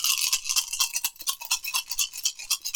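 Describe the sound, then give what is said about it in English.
Dice rattle and clatter as a player rolls dice for a spell in a game: a quick, continuous burst of sharp, bright clicks and taps that keep going for a few seconds, with no voices over them. “Roll your dice.”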